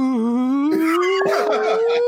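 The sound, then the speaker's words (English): A slide whistle glides slowly and steadily upward in pitch for about two seconds, loud and continuous, with scattered noisy clatter and bursts layered over its second half. “That's a slide. We don't want the slide whistle.”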